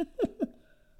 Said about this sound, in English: Seriously, I had to take a sip on that one